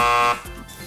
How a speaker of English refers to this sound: Okay, good. That car alarm went away.